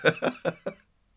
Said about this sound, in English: Oh, dear, should we do the news before I burst into another... outburst of synchronised coughing.